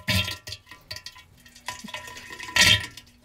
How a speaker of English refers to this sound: Big toilet blowout or deep thunderous toilet farts?